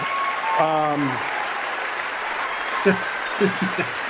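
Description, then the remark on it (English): A large audience at an award acceptance speech claps steadily throughout, a dense, even wash of applause, with a few voices calling out over it, one drawn-out shout early and short whoops near the end. “Venus Williams is like, I think I should applaud here.”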